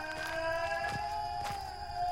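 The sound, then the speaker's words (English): An eerie, echoing wail in the woods holds a steady, ringing pitch throughout, layered with thin high overtones, while faint whooshing swells pass beneath it twice. No voices are heard. “As you continue your march through the woods, you hear an echoing wail all around you.”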